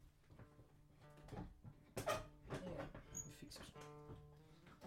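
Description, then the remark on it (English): A chair creaks and squeaks, with several strained groans and sharper cracks as it shifts under the weight of a person sitting in it, the creaking coming in uneven bursts over a few seconds. “That's uncomfortable for me now, but is that less creaky?”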